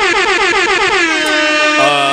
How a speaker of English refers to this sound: Hit my air horn in this bitch.